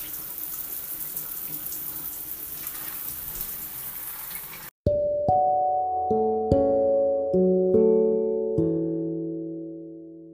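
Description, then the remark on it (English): A steady, even hiss of shower water runs for about five seconds, then cuts off abruptly and gives way to a series of ringing, sustained musical notes. “Okay, back, fresh out the shower.”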